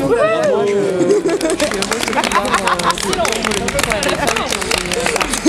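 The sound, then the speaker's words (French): An audience makes ambient crowd noise, many people talking over one another in a steady, loud hubbub of overlapping voices, with no single speaker standing out across the whole stretch. “Merci, vous faites le bruit d'ambiance un peu.”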